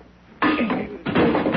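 A door is forced open with a final blow: two loud, harsh bursts of cracking and grinding noise, the second following the first after a brief dip, with no voices.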